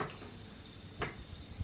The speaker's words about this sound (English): This is a chorus cicada singing. So that's the really common one we hear a lot? Yep.